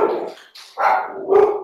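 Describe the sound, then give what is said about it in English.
A pet dog barks in a quick series of loud, sharp yaps, roughly three bursts in under two seconds, with no voices over them. “It's my dog's. Shut up.”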